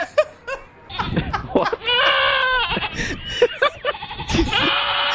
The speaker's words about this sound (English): Stop stressing out the goat. Okay, knock it off. Stop stressing out the goat. That goat was definitely stressed out.